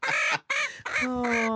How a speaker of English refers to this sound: A woman in Texas has a chicken that laughs when you tickle it. Okay. You ready? Yes. You ever seen a chicken laugh? All right. Here it comes. She's very ticklish.